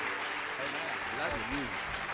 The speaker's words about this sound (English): Praise the Lord. While you're clapping your hands, why don't you lift up your voice?